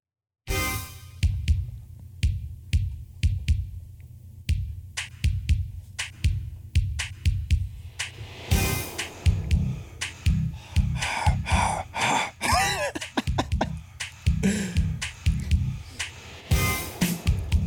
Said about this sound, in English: I never noticed that breathing until the headphones right now. Same. Yeah, I didn't notice until right now.